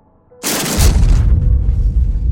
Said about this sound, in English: I don't slow my stride when I get to room 880. I am the manager. I can go wherever I like. So I kick the door in.